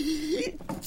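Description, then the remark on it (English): A single sneeze: a drawn-out voiced intake, then a sharp breathy burst and a short trailing exhale, moderately loud. “Bless you.”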